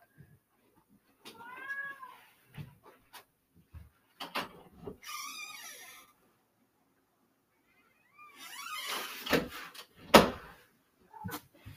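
A cat meows repeatedly, wanting to be let in, its cries mixed with clunks and rustling as a door is opened to let it in, followed by a few sharp knocks near the end.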